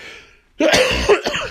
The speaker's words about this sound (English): I'm constantly coughing as well.